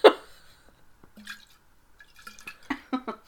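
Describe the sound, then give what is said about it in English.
A screw-cap bottle of wine is unscrewed and poured: a sharp opening click, then scattered drips and splashes that build into a quick run of gurgling glugs at the end, with no one talking. “I'm going to unscrew my wine to listen to your story.”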